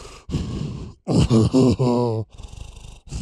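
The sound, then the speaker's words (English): A voice imitates something breathing inside a cave: heavy, ragged breathing, with breathy inhales and exhales around a series of deep, throaty groaning pulses in the middle, fairly loud, with no words spoken. “Why does it sound like something's breathing in here?”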